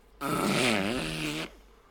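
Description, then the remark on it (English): A loud, buzzy fart imitation made with the mouth, one sustained blast just over a second long with a wobbling pitch, on its own with no talking. “Probably made the loudest, wildest fart ever.”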